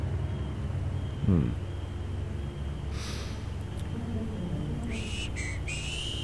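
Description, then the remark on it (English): A man, a Cossack general, whistles a short tune that rises and steps between a few clear, high notes near the end, then blows a smoke ring. The whistle is fairly faint over a low, steady rumble of background noise. No one speaks. “He smiled, whistled a tune, very deliberately blew a smoke ring into the air.”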